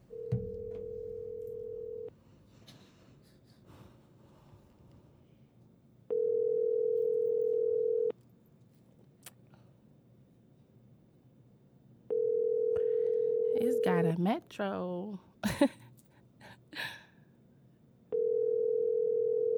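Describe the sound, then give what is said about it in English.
An outgoing phone call ringing tone repeats four times, each steady two-second burst separated by a few seconds of quiet, with faint voices murmuring between rings and a brief noisy clatter near the third. “He ain't doing shit. Answer the phone.”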